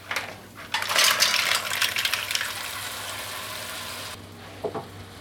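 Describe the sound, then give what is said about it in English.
Mussels are added to a cast iron pot after the heat is turned up, hitting it with a sudden loud sizzle that crackles steadily for a few seconds, then cuts off, followed by a couple of light shell clinks. “Let's turn up the heat in our cast iron pot. We're going to add our mussels once it gets up a little bit hotter. Mussels going in.”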